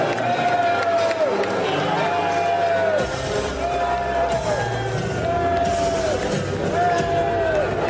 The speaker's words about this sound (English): Oh, man, that was loud and proud booing of that pathetic excuse for a rhino senator from Texas, Cornyn.